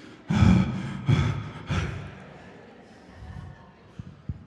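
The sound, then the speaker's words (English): Three heavy, breathy exhalations from a father into the microphone of his phone while he takes a video, each a broad rush of air, followed by quieter rustling and a couple of soft clicks. “My kids make fun of me whenever I take a video on my phone because they can hear me dad breathing.”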